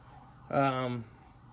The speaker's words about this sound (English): Sorry, ambulance driving by. Hope everybody's okay.